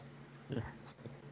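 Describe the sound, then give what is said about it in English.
A female dog, upset by a movie playing, lets out a brief, agitated whine or yelp, followed by a softer second sound, fairly faint against a low background hum. “The movie is freaking out the dog, that's why.”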